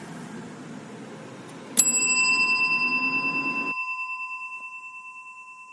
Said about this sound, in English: Yeah, that's the real bell. So that means I'm in cell. It's just to hear that sort of the after ring as it keeps going. It's just lovely.